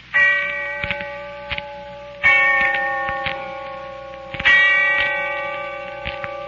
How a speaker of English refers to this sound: And when I heard the bell tolling somewhere in the distance, I remembered.